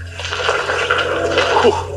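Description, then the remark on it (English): Water drips and trickles steadily from the ceiling above in an echoing cave, a continuous wet spattering over a low background hum, moderately loud. “Careful, there's some water dripping down from above.”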